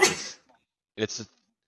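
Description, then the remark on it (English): A single sharp sneeze bursts out, then after a brief pause someone answers with a couple of short spoken words. “It's bless you.”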